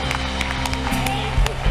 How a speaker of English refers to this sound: Let's give the Lord a big clap today.